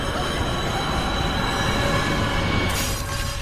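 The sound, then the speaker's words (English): A C train on the subway rumbles loudly and steadily through a tunnel, with a heavy low roar, faint metallic wheel squeal and a hissy rush of air throughout, no voices present. “Hey, that light at the end of the tunnel, guess what? That's not heaven. I'm killing you. I'm killing you. That's the C train.”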